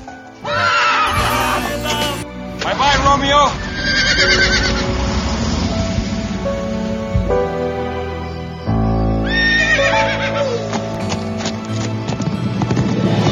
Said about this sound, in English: But anyways, there's a horse running.